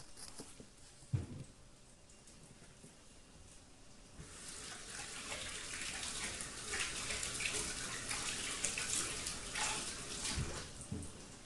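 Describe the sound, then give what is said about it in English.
A faucet turns on and water runs steadily with a bright, splashing hiss, broken by soft patter as a hand is rinsed under the stream to wash off egg. A couple of low thumps come before the flow starts. “I'm going to go over and rinse my hand quickly here.”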